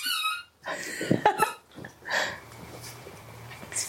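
High, tonal whines and squeaky yelps from several dogs, a few short bursts over about four seconds, with soft breathy noises between them and no talking.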